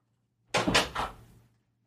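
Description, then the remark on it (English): A door is opened to let a pet in, with a quick series of rattling clunks from the latch and hinges, lasting about a second, with no voices. “She's at the door, and now she's going to be pissed that she's locked. I let her in, and now she's going to want to get the fuck out, like, ASAP.”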